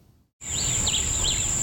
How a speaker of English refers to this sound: Birds chirp and lush trees sway in the wind, a scene of Caribbean tranquility.